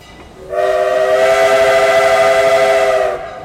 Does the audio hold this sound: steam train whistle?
yes